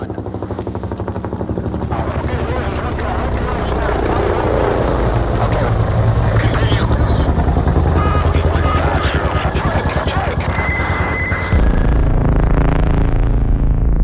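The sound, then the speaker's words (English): A helicopter on a mission in Afghanistan roars loudly, its rotor churning steadily for the whole stretch, with a dense rumbling drone and some higher mechanical whine mixed in. “was headed out on a mission in Afghanistan when the helicopter she was flying in went down.”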